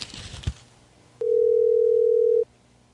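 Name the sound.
telephone dial tone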